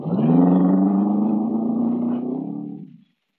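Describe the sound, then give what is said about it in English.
A car engine runs with a loud, steady growl, then fades as the car drives off in a chase, ending abruptly after about three seconds. “I drive fast enough to keep out of range, but not fast enough to lose them.”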